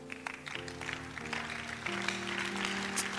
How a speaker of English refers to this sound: I wish your hand clap is better. I wish it was better.